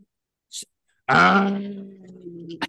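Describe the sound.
A person makes a loud, throaty guttural groan that imitates a camel's grunting call. It is raspy at first, then settles into a drawn-out, rumbling bellow lasting over a second, after a brief breathy hiss.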